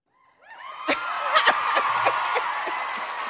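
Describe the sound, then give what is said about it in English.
A crowd erupts in whoops, cheers and laughter, with scattered sharp claps popping irregularly through the noise, building quickly and staying loud until the end. “Thank y'all for the clap.”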